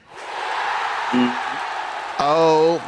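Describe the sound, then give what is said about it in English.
Two members of a radio show team cheer a guest's outfit, a steady wash of noisy voices with a brief shout partway through and a louder, sustained whoop near the end before it cuts off. “And I'm just going to look, I'm just going to see if you get the cheer for what you're looking at, for your sartorial look right now.”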